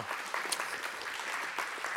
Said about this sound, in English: Wow. Yes, you can clap. Thank you.